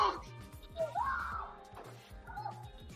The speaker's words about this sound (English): Here is opossums doing opossum things.